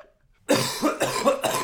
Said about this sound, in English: No, you know what would make that better? If you just lit a cigarette right now. think that'll make her cough better.